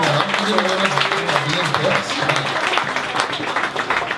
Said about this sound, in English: You know? it's like, yeah. You can clap, it's good.